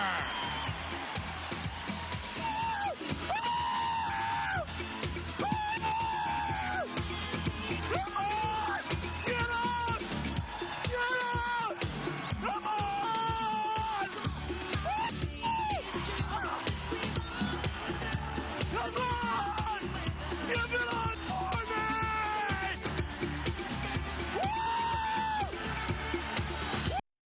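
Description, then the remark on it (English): Steve Ballmer yells and whoops loudly and repeatedly on stage at a Microsoft presentation, in rising, drawn-out bursts over a steady roar of a cheering crowd, the noise continuous and intense for the whole stretch. “came out shouting at the top of his lungs”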